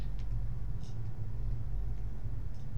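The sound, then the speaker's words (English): A train coming back in rolls past with a steady, heavy low rumble that never lets up, while faint high squeals flicker briefly over the top. “There's that train coming back in.”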